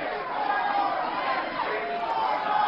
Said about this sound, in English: So the crowd jumps in and starts chanting over him, huh?